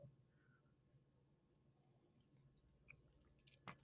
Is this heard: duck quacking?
no